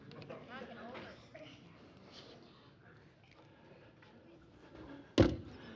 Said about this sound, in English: I better get a cap on that before I knock it over.